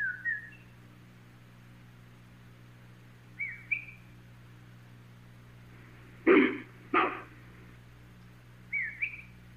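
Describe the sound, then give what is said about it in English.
A whistle, and a hunter whistles back: short, rising whistles trade back and forth across a quiet, humming background, with two harsher, louder rasping calls breaking in midway before another brief whistle closes the exchange. “There was a whistle, and the hunter whistled back.”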